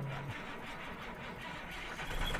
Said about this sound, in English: This truck is very loud